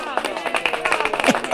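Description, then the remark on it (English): A group of people applauding, with dense, irregular claps overlapping steadily throughout. Some voices blend in underneath the clapping. “Boy, the people applauding and working overtime today.”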